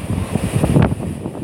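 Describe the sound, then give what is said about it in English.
Strong seaside breeze buffeting the microphone with a steady low rumble and gusty swells, over a faint wash of surf in the background. “And the wind, the breeze is strong.”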